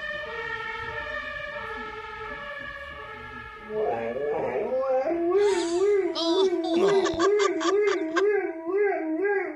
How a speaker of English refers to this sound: Now, this is a dog imitating a police siren, which sounds like it's probably from the UK.